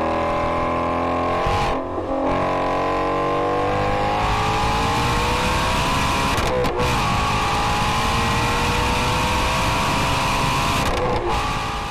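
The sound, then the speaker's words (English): A high-revving V8 race car screams loudly and continuously on the Nürburgring track, its engine pitch climbing steadily with a few brief dips at gear changes. No voices. “or here's a sound from a video of one running on the Nürburgring.”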